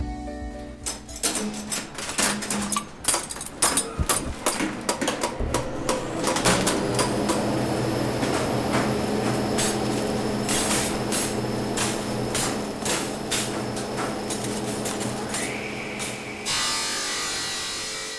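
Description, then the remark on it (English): Machinery in the engine room in the basement of Sunshine Hospital: clattering mechanical knocks and clicks open over a low rumble, settling into a steady droning hum with tonal whines, then a brief higher-pitched hiss near the end. “Those are the sounds you hear when you enter the basement of Sunshine Hospital. It's the engine room of the building.”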